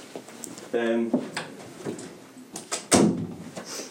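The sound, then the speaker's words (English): A door swings shut with a solid thud partway through, preceded by shuffling movement and a brief muffled voice in the room. “Close the door.”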